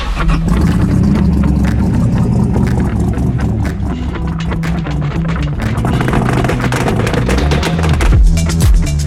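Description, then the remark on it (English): A V8 engine swapped into an old Volvo 164 sedan roars loudly, its deep rumble holding steady and surging through repeated revs with no one talking. “those car sounds were sent in by Tanner a couple of weeks ago. That was his Volvo 164 with an LS.”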